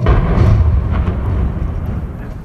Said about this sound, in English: You have the entire leadership of China looking down from the Tiananmen Gate, and then you have a gigantic military parade. It begins with a 70-gun salute from artillery pieces in the square.